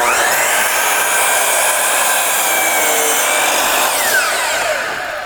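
A power saw cuts through a wooden door along a pencil line, a loud, continuous high-pitched whine with a gritty cutting texture that shifts slightly in pitch, then tapers off at the end. No one speaks.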